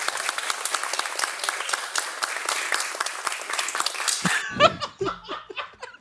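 Dense, crackling applause of many hands clapping for about four seconds, celebrating the arrival of an email, then cutting off into a burst of laughter and a few scattered voices.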